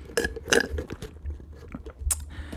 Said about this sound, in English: Excuse me, just took a sip of my leftover Starbucks. You know you're poor when you're drinking leftover Starbucks.